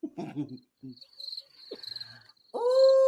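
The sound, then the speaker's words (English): Crickets chirp in a steady, high-pitched trill for a couple of seconds, following a brief burst of voices and cut off by a loud, sustained tonal sound at the end. “You better dust those crickets out of your pussy, bitch.”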